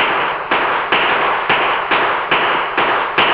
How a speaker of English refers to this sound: Whoa, whoa, whoa, whoa. I don't know what that shooting is about. Look, there goes somebody over there.